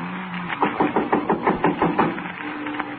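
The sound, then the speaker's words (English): A neighbour from next door knocks on a door, a steady run of about ten firm knocks, evenly spaced and fairly loud, with a faint low hum underneath and no voices. “Somebody at the door.”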